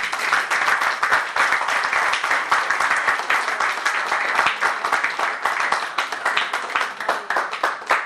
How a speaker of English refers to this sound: Can you give Jesus a big clap offering?